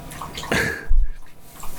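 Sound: dog lapping drinking water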